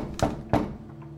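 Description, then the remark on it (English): Two firm knocks on a front door, evenly spaced about a third of a second apart, each a short dull thud over a faint steady background hum, with no voices. “Someone's at the front door.”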